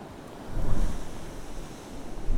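Ocean swell sweeps into a small sea cave and crashes with a low booming thud and a spume of spray, a broad wash of churning water that swells up loudly and keeps roaring, with no voices.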